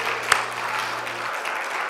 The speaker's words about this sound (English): So good to see our visitors in the house of the Lord today. We're really glad you're with us. Let's give our visitors a good round of applause. Thank you for being with us.